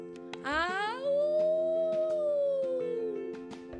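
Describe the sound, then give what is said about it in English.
A single loud, drawn-out howling wail from within a tree stump swoops upward, holds, then slowly sinks over a few seconds, starting with a brief higher yelping cry, over a faint steady background hum. “Sure enough, another howling, yowling, bellowing wail came from within.”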